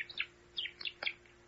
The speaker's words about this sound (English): Hello? What have we here? Hello, little bird. What's your problem?